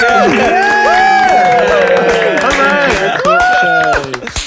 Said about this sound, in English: Right, so same as we did last time, shall we all do a little clap and a little woo? Try energy up, everyone.